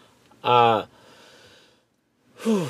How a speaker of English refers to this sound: I'm so sorry for the yawning.